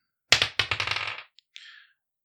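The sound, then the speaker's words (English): Dice rolled for a water control check during a game rattle across a hard surface in a quick burst of sharp clicks that slow and fade, followed by a single tick and a short, soft scraping hiss. No one speaks. “Roll a water control.”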